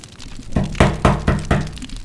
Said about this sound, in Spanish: Están tocando la puerta.